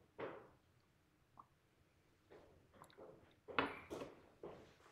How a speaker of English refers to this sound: I'm going to take a sip of coffee and let y'all think about that.